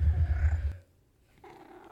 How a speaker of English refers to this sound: Again, there's no escaping her, so please excuse the meows that you might hear.